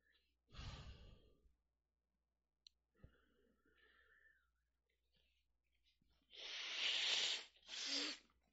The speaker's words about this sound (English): Yep, I'm still blowing my nose from that earlier cry.